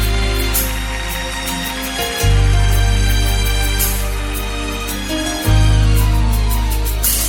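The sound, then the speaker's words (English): A crowd claps along in a steady rhythm to applaud God, over loud, sustained organ and bass music, the handclaps sounding as crisp repeated bursts riding on top of the swelling chords. “Clap your hands again.”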